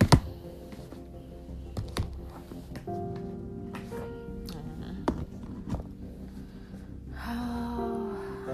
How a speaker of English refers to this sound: Let me try to find a little bit more upbeat deck. I'm going to be shuffling while I'm still recording because it's just easier to do it that way.